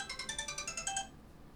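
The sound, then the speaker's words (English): A phone ringtone chimes in a quick, rhythmic burst of bright electronic tones, about ten rapid pulses over a second before cutting off abruptly, clear with no talking. “I will turn the volume off on my phone.”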